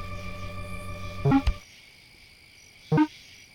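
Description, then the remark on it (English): Two short, bright chirping calls from tree frogs, called zipper frogs, sound about a second and a half apart, over a steady hum and faint background noise. “Tree frogs!”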